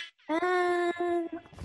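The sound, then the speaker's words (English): An air horn sound effect blares in a loud, steady, buzzy tone, one long blast followed by two quick shorter bursts, prominent with no talking over it. “Let's get some air horns.”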